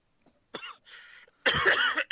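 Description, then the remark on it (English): A sick person coughs: a short hack, a softer raspy breath, then a longer, harsh burst of coughing that cuts off abruptly with one more quick cough. “Okay, let's see which one we can go longest without coughing.”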